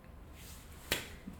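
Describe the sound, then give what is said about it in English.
One sharp, crisp hand clap rings out alone against a quiet, faintly hissing background, with no talking around it. “Slow clap it, baby.”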